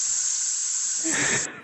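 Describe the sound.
A loud, steady hiss of air rushing out of a balloon, lasting about a second and a half, turning rougher and sputtery near the end before abruptly cutting off.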